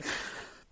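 A single sharp sneeze, a quick breathy burst of noise that fades within a second, with no talking around it.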